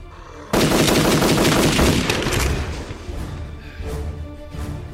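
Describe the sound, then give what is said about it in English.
A sudden burst of rapid gunfire erupts, loud and sustained for a couple of seconds, then tapers into scattered, echoing shots and rumbling reverberation. “The gunshots! You called others here!”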